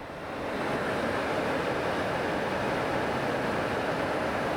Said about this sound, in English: And you can hear as well, this would have been the soundtrack that she would have enjoyed. I'll just put the microphone up to the window here, but this is the river that's running past quite violently at the moment.